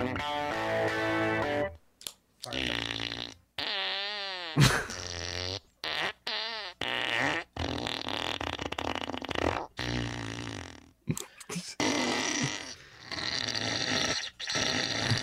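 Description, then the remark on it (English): Guitar notes played through a fart-sound effects pedal, giving a loud series of buzzy, sputtering, pitch-bending blasts separated by short silent gaps, with no talking. “you can toggle between wet and dry farts and how much gas is in the mix. And it's just a guitar pedal.”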